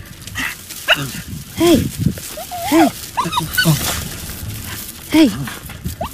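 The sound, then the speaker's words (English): A dog whines and yelps in a series of short, pitch-bending cries that rise and fall, repeated several times over a few seconds, against a steady noisy background. “You can, when the dog's like doing its thing, you can hear the.”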